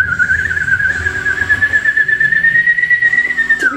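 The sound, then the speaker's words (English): A woman cups her hands to her mouth and blows a single long, warbling, ululating whistle, holding one wavering pitch for several seconds before dropping off at the end, loud with no talking. “And she's staring at you, and then she kind of cups her hands to her mouth and issues this weird sort of ululating whistle, you know, like a...”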